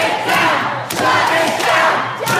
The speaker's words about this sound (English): So they'll continue to temper tantrum and yell and scream and bang on doors that are never going to open.